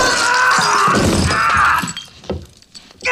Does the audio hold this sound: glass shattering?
yes